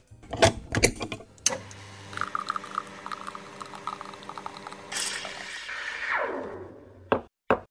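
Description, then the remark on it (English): An espresso machine clicks a few times, then its pump buzzes steadily while liquid trickles, a loud hiss of steam rises and fades, and two sharp clicks end it. “And now, let's head over to my espresso machine as it's time to brew up another leadership espresso shot.”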